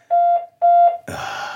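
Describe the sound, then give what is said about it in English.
An outside door buzzer of a house sounds twice, two steady, mid-pitched electronic tones of equal length with a short gap between them, followed by a burst of loud, rough hiss. “That's the outside buzzer for this house.”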